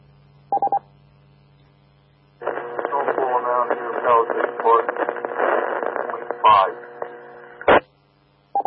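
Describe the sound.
A steady low electrical hum runs beneath a radio transmission during an on-air round of snowfall reports, with short tone beeps at the start and end and a burst of distorted, garbled talk in between.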